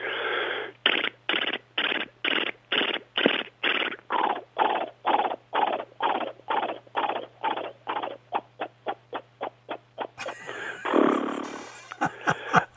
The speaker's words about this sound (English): Let's just do some more of these. Yeah, galloping horse, yeah. Galloping horse, here we go.